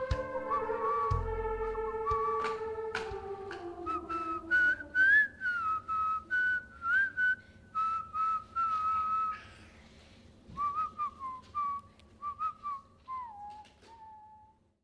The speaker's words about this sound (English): And so now I'm making sure that these guys learn how to whistle. I'm encouraging it. Not yet, but you're learning.